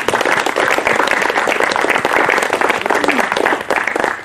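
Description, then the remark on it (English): A group of people clapping together for everyone and for God the Father, a dense, steady patter of many hands sustained for several seconds at a strong, even level with no talking over it. “Yes, and thank, let's just, I mean, can we just give a clap for everyone and a clap for the Father as well for that.”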